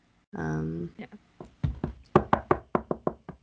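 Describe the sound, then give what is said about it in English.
A short voiced hum, then a run of about ten sharp knocks on a door, coming in a steady, slightly quickening rhythm and growing firmer toward the end. “go to, like, the other doors and knock and just see if everyone's awake.”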